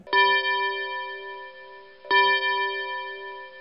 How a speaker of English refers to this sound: All right, so the double chimes there.